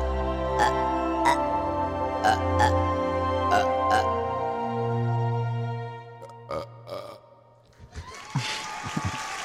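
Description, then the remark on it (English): A long, drawn-out belch, loud, rumbling low with croaky, gurgling pulses, then trailing into a breathy, noisy burst at the end. “Who was it that hates the burps?”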